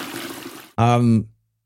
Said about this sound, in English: Why'd you just flush a handful of ones down the toilet?